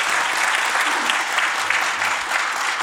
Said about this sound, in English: deserves an incredible round of applause. Thanks.